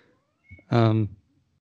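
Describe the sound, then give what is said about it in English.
A single loud cat meow with a rising, harmonic tone lasts about half a second, from a cat wanting to be let out, preceded by a faint rustle and a brief higher whine in the background. “You can hear the other cat probably. Oh. No, he wants out.”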